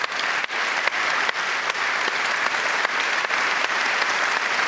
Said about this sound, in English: Applause afterwards, but this team deserves to be celebrated and deserves to be listened to, and I'm going to give them again a big applause, and I hope you will join me.